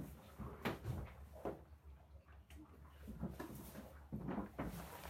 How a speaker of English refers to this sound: As I sit here now, I'm sitting in the cabin of the boat and the red lights are on. All of the navigation board ahead of me, as I say, is lit up with all the things there. And the door, well, let's open her up.